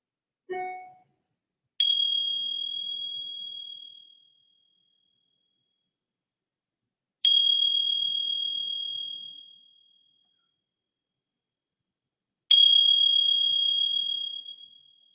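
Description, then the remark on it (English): A bright bell is struck three times, about five seconds apart, each strike ringing out clearly and fading slowly into silence before the next. “And then receiving the sounds of the bell.”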